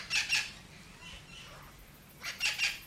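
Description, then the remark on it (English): Parrots let out harsh, raspy squawks in two short bursts, each a quick double call, separated by a lull of faint background noise. “They start interacting with local wild birds that are in the area because they make racket, they make a noise, and that attracts wild birds.”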